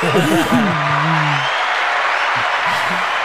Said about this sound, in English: Shout out. Hey, give a clap.